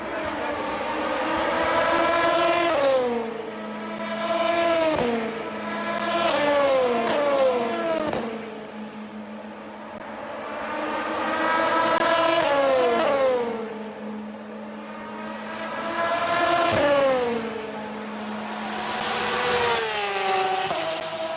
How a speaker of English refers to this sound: But we are going to have a short intermission and with some car noises, because who doesn't love race car noises?